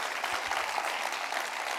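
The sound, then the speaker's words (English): A church audience applauds its pastor steadily, a dense wash of many hands clapping at an even volume throughout, with no voices rising above it. “Let's say thanks to God for them, okay? Don't golf clap them, all right?”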